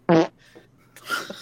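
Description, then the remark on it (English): A short, buzzy fart sound bursts out near the start, followed by quieter rustling and a brief hissy, breathy noise toward the end, with no talking. “You muffled fart.”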